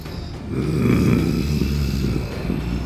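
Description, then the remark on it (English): A person imitates the growl of a heretic creature during a role-playing game: a low, rough, rumbling rasp held for about three seconds, steady and fairly loud, with no words spoken. “You can't tell if that's a growl of pleasure or frustration from the heretic.”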